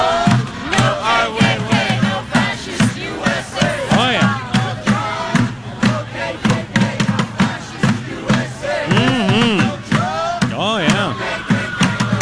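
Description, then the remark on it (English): A crowd chants and screams at the sky over a steady, mellow, reggae-like pounding beat, voices rising and falling in loud, sweeping wails above rhythmic low thumps throughout. “They literally were screaming at the sky. And of course, they had the chanting going on.”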